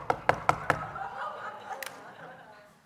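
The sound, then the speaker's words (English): Four quick, evenly spaced knocks rap sharply on a front screen door, a little aluminum door, followed by a stretch of quieter room sound with a couple of faint clicks. “And as soon as it comes out of my mouth, as soon as I say that, someone knocks on the door.”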